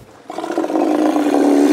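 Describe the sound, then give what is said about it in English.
AMAC, the Vancouver Aquarium's Steller sea lion, lets out a deep, rumbling roar while collecting a seafood lunch from a Harlem Globetrotter in Vancouver. It starts abruptly after a brief quiet moment and holds loud and steady to the end, with no talking. “That's the Vancouver Aquarium's stellar sea lion, AMAC, collecting a seafood lunch from Harlem Globetrotter”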